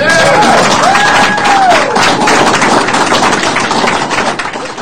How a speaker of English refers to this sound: Yeah. That's like a bunch of white hands clapping.